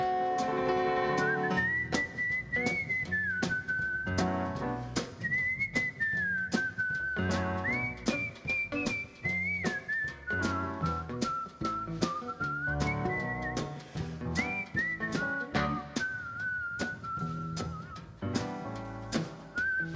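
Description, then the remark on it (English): A person whistles a cowboy-style tune, the melody bright and steady, riding over a loud backing track with a regular, punchy drum beat throughout. “From Brazil, from something that doesn't rhyme with Brazil, and he whistles that whistle like a cowboy man.”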